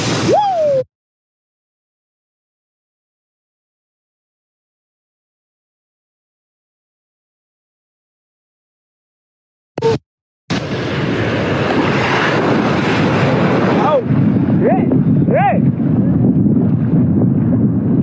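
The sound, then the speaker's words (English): After a brief burst and a long silence, steady wind and rushing water rise, with a low engine-like rumble and occasional high whistling tones, from a boat out on the open ocean. “The ocean big in the motherfucker, man.”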